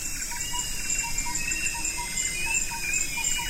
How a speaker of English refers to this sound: What can you hear? A bird? Some insects? And maybe even some gibbons in the background. I'm in Borneo, a treasure trove of biodiversity.